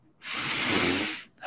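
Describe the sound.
A long, loud, exaggerated sniff drawn in for about a second, with another sniff just starting as it cuts off. No one speaks.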